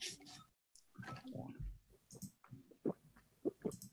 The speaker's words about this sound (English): He's drinking. He recorded himself drinking. Yeah, he did.